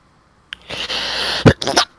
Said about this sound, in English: Bless you. Thank you.